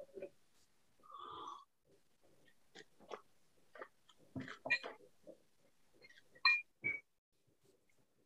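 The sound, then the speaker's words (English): Quiet sips and slurps of gin, broken up by soft sniffs and breaths, with a brief murmured vocal sound and a few sharper intakes near the end. “Okay, let's first have a sip.”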